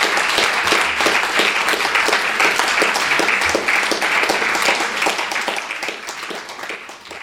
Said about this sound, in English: Well, I think we should give you another round of applause. That was a wonderful one. Thank you very much.